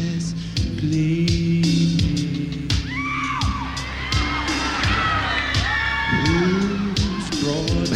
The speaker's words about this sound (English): Listen to how the crowd is shocked. Like, what is going on?